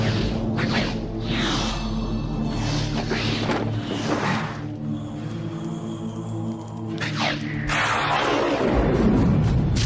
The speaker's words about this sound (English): And then another one comes along, and it's rain.